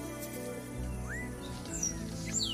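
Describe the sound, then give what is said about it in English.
Several tropical jungle birds call in the Los Tuxtlas region of Veracruz, Mexico, in the foothills of the Volcan San Martin, with scattered thin whistles and upward-sweeping chirps over a steady low background hum. No one speaks. “All around us here, you've got the sounds of the birds of the tropical jungle.”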